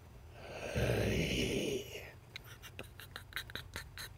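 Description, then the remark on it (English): A voice imitates a creature: a loud, breathy snort-like gasp lasting about a second, followed by a quick run of wet, slimy clicking, chittering and lip-smacking sounds. “Kind of weird, odd series of gasps and chittering and slimy, kind of almost lip smacking sounds.”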